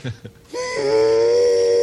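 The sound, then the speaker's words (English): A security guard imitates a train whistle: two short breathy puffs, then a loud, sustained whistling tone with a slight upward bend that holds steady to the end. “Oh, this was the security guard who made the sound of a train.”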